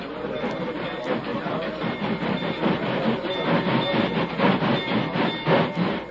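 A train rumbles steadily across a bridge, its wheels beating out a quick, rhythmic clatter over the rails, loud and continuous throughout.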